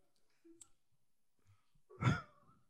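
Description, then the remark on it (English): A person imitates a fart with their voice: one short, buzzy, low-pitched burst lasting about a third of a second, following a stretch of faint small noises. “If you have to reenact the sound of the fart.”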